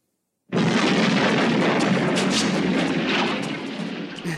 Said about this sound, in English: The back of the jail explodes into the room